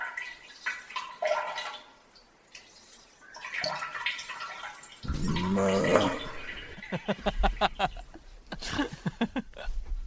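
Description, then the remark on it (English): A urinal flushes in a grotty pub toilet, water gushing and splashing with rushing and gurgling bursts that come and go alongside faint, indistinct voices. “Was it a pub urinal?”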